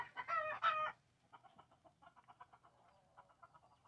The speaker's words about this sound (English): Might be a drone or something making my chickens all go nuts.